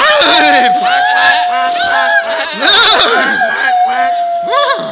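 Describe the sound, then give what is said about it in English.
Several voices loudly imitate animal sounds, horse neighs, bird chirps and cow moos, overlapping in a noisy, playful jumble over a steady sustained tone, continuing throughout. “Let's celebrate our Savior's birth with neighs and chirps and moos.”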